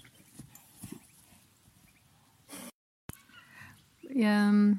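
Horses being trained close by: soft snorts and shuffling thuds, then a brief gap before a loud, nearby whinny with a strong tonal rise rings out at the end.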